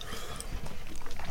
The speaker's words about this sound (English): So caramels are often a soft, chewy confection. These might be a bit harder. They might be a little bit harder. They certainly are. Oh, goodness me. How are we going to talk and chew at the same time?